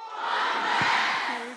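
A crowd of students in a West High School auditorium shouts the chant "One West" in unison, a loud, sustained burst of many voices that holds steady, then tapers slightly at the end.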